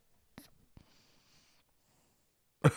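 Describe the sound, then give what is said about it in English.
A male cat breathes softly through its nostrils: a couple of brief clicks, then about a second of quiet, airy hissing, and after a pause a sudden louder rustling burst. “Just his nostril breathing.”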